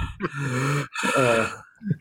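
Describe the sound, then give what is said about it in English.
Heavy breathing: two long, drawn-out breaths with a raspy, partly voiced edge, each lasting most of a second, followed by a shorter huff at the end. “Is that who's on my front porch right now? Because just sent breathing heavy.”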